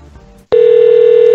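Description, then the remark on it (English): A telephone's electronic ring sounds loud, one steady unbroken tone that starts abruptly after a moment of low background noise and holds to the end. “What's with this phone ring?”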